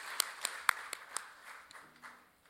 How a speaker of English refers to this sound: would you come on up and maybe give her a round of applause for sharing your story with us today.